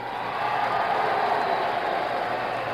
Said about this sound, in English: You can hear the boos of segregationists and the cheers of many in the hall.